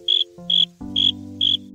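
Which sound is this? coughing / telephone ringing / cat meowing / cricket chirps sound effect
cricket chirps sound effect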